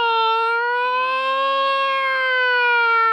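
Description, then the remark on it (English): An old-fashioned fire engine siren gives one long, loud wail. Its steady pitch rises gently, then eases back down over about three seconds, with no talking alongside. “Or you'd hear the old-fashioned fire engine, woo!”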